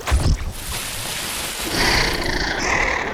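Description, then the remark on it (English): A monstrous roar from a pet skunkosaurus opens with a deep, thudding low burst, then swells into a loud, rasping, sustained bellow with a shrill edge that holds steady for several seconds, with no one speaking. “Oh, my pet is a skunkosaurus, by the way.”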